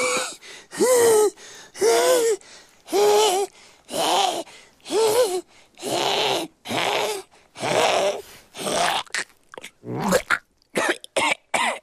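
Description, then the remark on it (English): A cat falls to the ground and hacks and retches up a hairball: about a dozen loud, raspy gagging coughs with strained, wavering tones, growing shorter and quicker toward the end. No one speaks. “The way he falls to the ground and starts having a hairball attack.”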